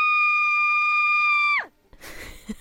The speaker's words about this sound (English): That sounds like a sound effect scream. You know what I mean? You download online. You'd be like, sound of girl screaming. I like that one.